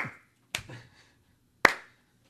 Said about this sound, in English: She called for the slow clap.